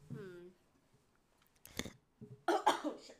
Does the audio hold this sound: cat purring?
no